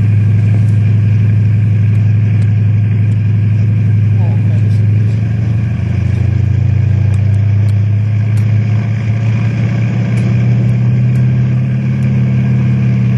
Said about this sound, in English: You turn, too, with that chopper whizzing around your head.